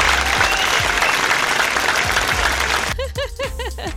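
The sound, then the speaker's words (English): A burst of dense, steady applause from many hands, loud and continuous for about three seconds before thinning out as a voice breaks in at the end. “I completed my first year of teaching full time. Clap for me.”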